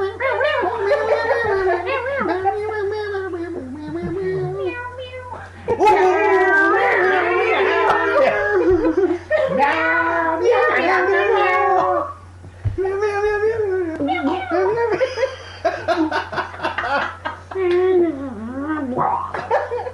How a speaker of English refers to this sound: That was good. Cats do the best ultra chants.